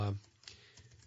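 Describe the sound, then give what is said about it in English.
A brief vocal fragment at the start, then a few soft, irregular clicks of typing on a computer keyboard while someone looks up an obituary online, quiet in an otherwise still setting. “You can hear me typing.”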